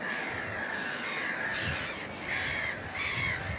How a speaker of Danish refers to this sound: Og skrig og skrål. Men de her små hættemåger, de har jo den her meget skrigende stemme, hæse stemme. Og ternerne har en endnu hæsere stemme, endnu lysere.